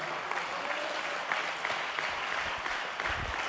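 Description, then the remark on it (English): An audience claps their hands in a steady, dense wash of applause lasting a few seconds, with no voices standing out above it. “somebody clap their hands and say, yes, we believe that, Pastor.”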